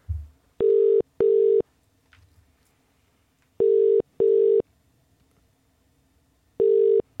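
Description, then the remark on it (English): A telephone ringing tone from a call to McGee's Bakery sounds in steady double pulses, two short buzzy tones, a pause, then two more, repeating clearly and fairly loud over a quiet line with no one talking. “Let's phone him just now.”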